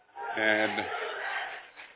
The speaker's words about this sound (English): And the student section letting him have it. Of course, they're yelling while they're man's trying to make a free throw.